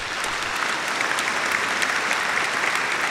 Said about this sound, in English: Like, maybe it's not your total thing, but it's 1988's Ron Howard's Willow. Hold for applause.